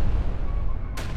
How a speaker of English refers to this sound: We planted an explosive with a high-yield pulse on that rock we just left.